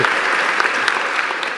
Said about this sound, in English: So, thank you. I'm clapping you.